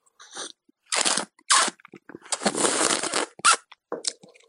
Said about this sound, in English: you suck it in, and I'll give you a rough idea of what it sounds like, because I have a cup of tea here. It's not a glass of wine, even though it's Friday. We can imagine. This is kind of what it sounds like. It's a bit hot. That's the only problem.